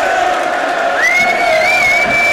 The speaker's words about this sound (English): Wow. This is just relentless, isn't it? It is. The fans are on their feet clapping. They're desperate for this to be it.